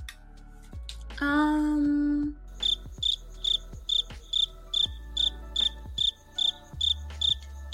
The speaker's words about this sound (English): Maybe there's crickets for me too.